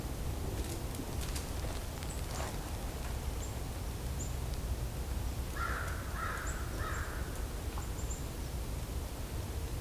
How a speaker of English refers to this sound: Crows are kind of a separate flock, but this mixed flock is robins, chickadees, kinglets, woodpeckers.